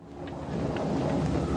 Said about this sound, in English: it's raining, lightning, the plane's kind of buckling around, it's night, it's dark